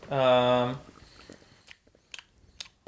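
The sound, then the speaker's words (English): A brief voiced sound opens, followed by irregular crunchy, clicking chewing noises close to the microphone, several sharp bites and smacks spread over a couple of seconds. “You can't chew like that on the mic.”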